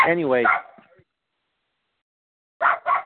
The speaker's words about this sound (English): anyway, it was tough to do the show with all these barking dogs, but anyway, all right, I think we're good now.